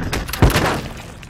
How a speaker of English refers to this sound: Then he slams the brakes as Miles runs into the road. The brakes screech and the Jeep hits Miles with a thud.